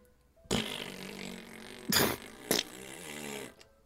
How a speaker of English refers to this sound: Big fart. Yeah, big fart on that. Okay. Big fart stinky.